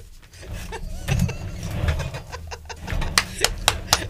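An office chair spins around three times, its base creaking and squeaking with a low rumbling whir, ending in a few sharp clicks.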